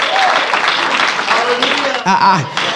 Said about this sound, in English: Somebody clap your hands and give him praise in this house. Woo.